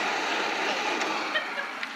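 A vacuum cleaner with no bag runs steadily as Rochester cleans Jack Benny's house in Beverly Hills, a constant airy whoosh with a motor hum underneath, holding the same loudness throughout with only a few faint clicks and no voices.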